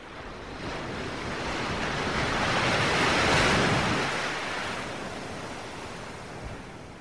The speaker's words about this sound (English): And a particularly large wave kind of rocks the boat to the side as the crew is bringing in sails and preparing the ship for choppier waters.